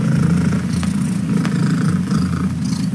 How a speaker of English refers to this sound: What was that, you ask? That is 14-year-old Bella, a mixed cat from Cambridgeshire in the UK. And this week, her purr broke the Guinness World Record for the world's loudest purr by a domestic cat. It measured 4.59 decibels.